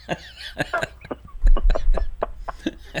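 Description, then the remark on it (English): A run of short, sharp coughs in quick, uneven succession, fairly loud, with no talking, over a low rumble in the background. “Glad I got a cough button in here.”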